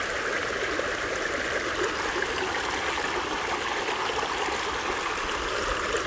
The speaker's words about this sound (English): As you imagine being at this beautiful creek, what do you see? What do you hear? What do you smell?